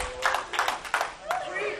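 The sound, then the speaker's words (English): A small audience, women among them, claps in a few loose, irregular bursts over about two seconds, moderately loud and mixed with voices and crowd murmur. “And I see all you ladies clapping.”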